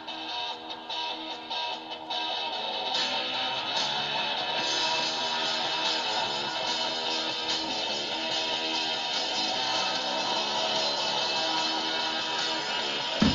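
A rock song plays from an Alexa smart speaker, a dense, droning wall of distorted guitars and sustained tones at steady volume, slightly thin and muffled, with no voices over it.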